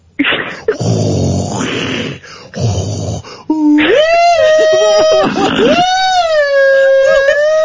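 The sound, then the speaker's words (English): A voice imitates the whooshing of the TARDIS central column: breathy, rasping pulses give way to a loud, sustained warbling tone that rises and falls in pitch. “That was the central column of the TARDIS. It sounds like Darth Vader.”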